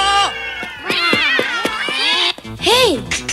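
A herd of cats chasing Rax meow loudly, their overlapping calls rising and falling in a busy chorus, ending with one long, drawn-out meow.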